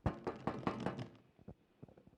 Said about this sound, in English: She took it home. She knocked on Reg's door, the elderly man.